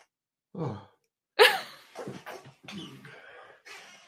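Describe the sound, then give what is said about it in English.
A single sharp sneeze bursts out after a short intake of breath, followed by a few breathy sniffs and exhales as the person recovers. “I've never sneezed on a show before.”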